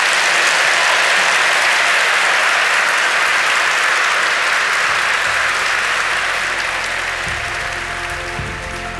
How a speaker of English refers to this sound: I wanted to thank the audience for coming out tonight for Seattle Arts and Lectures event, which always reminds us of how great it is to live in this city. Yeah. For a moment like this, and to please give a round of applause to Valeria Rousseau.